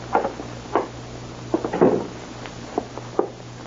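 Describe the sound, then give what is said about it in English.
A door being opened: a series of short wooden clunks and latch rattles spread over a few seconds, with a low steady hum underneath and no voices. “Don't open that door.”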